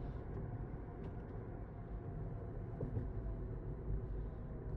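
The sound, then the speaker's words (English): Steady low engine rumble from inside a car creeping along in traffic, a constant muffled drone with no voices, faint road noise filling the background throughout. “Man, my nose is stopped up, and the traffic is too.”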